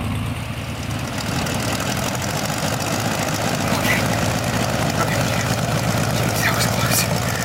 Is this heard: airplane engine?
yes